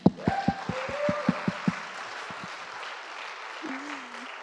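An audience applauds, starting with a burst of sharp, evenly paced clapping that quickly thins into scattered claps and general crowd noise, with a voice briefly calling out near the end.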